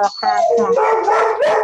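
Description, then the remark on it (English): A dog barks and yowls loudly in a rapid, continuous burst of strained, high-pitched vocalizing lasting under two seconds. “Dogs are literally attacking me now.”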